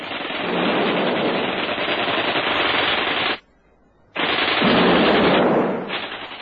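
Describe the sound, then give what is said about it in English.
Rapid, continuous gunfire rattles loudly in two sustained bursts like a machine gun, broken by a brief silent pause, with no voices. A gun is fired wildly during a sudden attack while hand grenades are thrown. “Davy and Rosita ran out of the front door at once, he flinging hand grenades, and she firing wildly with a gun.”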